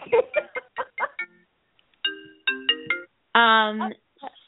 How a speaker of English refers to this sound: My phone rings on my computer, and it's like, oh, it rings on my computer. It rings on my Fitbit bracelet. It's like my phone is everywhere.